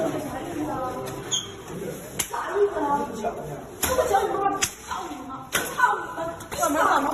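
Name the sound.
slap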